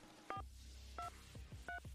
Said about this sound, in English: Using the keys on your touchtone telephone, please enter the phone number beginning with the area code where you would like to be reached.